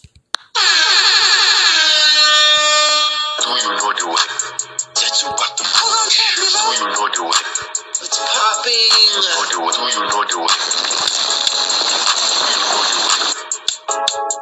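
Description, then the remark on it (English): A loud, brassy air horn blares in a sustained blast for about three seconds, then continues in a dense, chaotic run of repeated horn blasts layered with other clattering sound effects. “Let me sound that alarm one time for the one time.”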